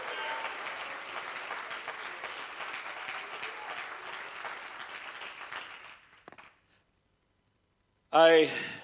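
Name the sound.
audience clapping hands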